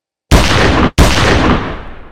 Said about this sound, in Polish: Dwa strzały za wami, a po tych strzałach bagna absolutnie zamarły. Słyszycie, jak echem dwa strzały, prawdopodobnie z pistoletu Iwany, które rozchodzą się po całej okolicy i chwilę później kolejny.